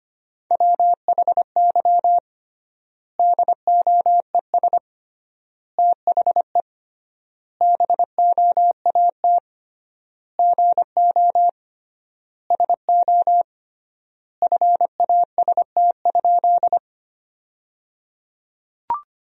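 Morse code beeps at 25 words per minute sending sentences built from the 500 most common words, with triple word spacing: a steady mid-pitched tone keyed in quick dots and dashes, grouped into words separated by long gaps, with no voices and a faint click at the end.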